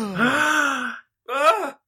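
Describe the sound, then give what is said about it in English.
A single voice mimics a crowd gasping: a drawn-out, voiced 'ooh' of about a second, a brief pause, then a shorter rising-and-falling gasp, fairly loud. “And the crowd gasps.”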